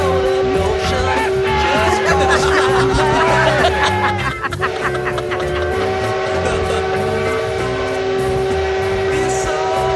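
A steam train rumbles steadily while a man blows its horn, the tone held through most of the stretch, dense mechanical clatter and hiss underneath, briefly dipping around the middle.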